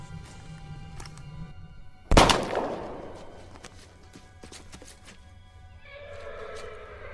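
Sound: horse whinnying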